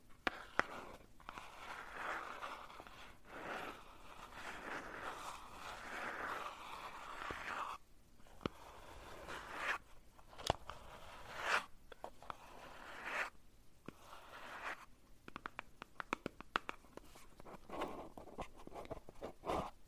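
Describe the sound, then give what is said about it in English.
Continuous handling of a small black paper-wrapped cardboard box: crinkly rustling and scraping in uneven bursts, punctuated by sharp little taps and clicks, with no voices. “It's just a paper wrapped cardboard box.”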